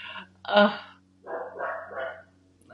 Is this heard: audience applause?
no